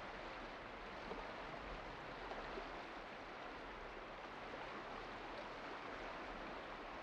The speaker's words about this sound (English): Maybe now you might want to tune more into the sounds of the water and the sound of the rain on the water.